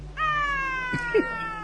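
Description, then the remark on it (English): A cat lets out a long, loud, strained yowl lasting over a second, steady and piercing, with a brief thump partway through and no one talking. “She sounded like a window closing on a Tonkinese cat's tail.”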